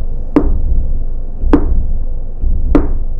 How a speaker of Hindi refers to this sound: अचानक से उसने दरवाजे को नॉक किया।